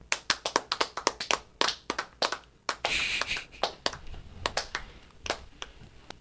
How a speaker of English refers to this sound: I'll give her a golf clap.